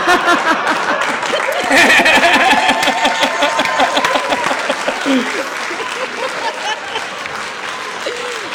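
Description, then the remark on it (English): A Los Angeles crowd applauds loudly and steadily for several seconds, with scattered cheers and whoops rising over the dense clapping before it eases off slightly toward the end. “Just so you know, that's an LA crowd.”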